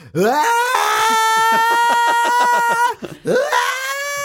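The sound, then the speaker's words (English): A voice attempts a rock singer's scream, a loud strained vocal wail held for about three seconds with pulsing, shaky breaks, then cut off and restarted briefly, harsh. “Oh, I really wish I could have nailed that scream because that made it sound like I was making fun of him.”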